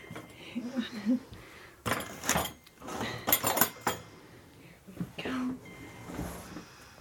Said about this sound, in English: Okay, well, I'll just move your dinner tray off this chair.